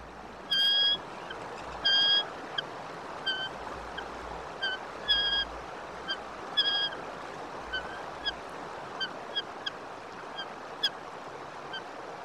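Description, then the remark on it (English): A male and a female eagle give a series of high, piercing chirps, some clustered in short bursts, as the male brings the female a fish, scattered over about twelve seconds against a steady background hiss of wind or water. “We pulled just a little bit of sound from a video of the male eagle bringing the female eagle a fish.”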